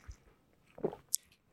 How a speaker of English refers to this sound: Sorry, I'm gonna drink water.